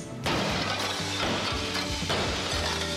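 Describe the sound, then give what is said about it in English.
Loud glass smashing bursts in suddenly, then keeps crashing and clattering for a few seconds with repeated heavy impacts and scattering shards, harsh, with no voices. “Thermal Safe security glass can protect you and your family from flying debris and accidental or intentional glass breakage.”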